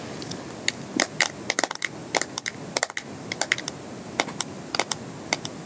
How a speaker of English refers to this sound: My favorite kind of tapping is tapping on a phone. So that is what I'm going to try now.